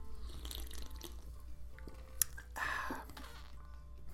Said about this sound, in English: Need to swallow something. Hold on, let me take a sip of this ice cold Mountain Dew Zero.